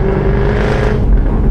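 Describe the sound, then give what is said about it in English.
The engine of a red V8 car with its roof off, driving through Harrogate on a Sunday morning, rumbles loudly and deeply, a steady throaty roar with a low hum running through it, sustained for the whole moment with no talking. “Behind me, I noticed in my mirror, was a red V8.”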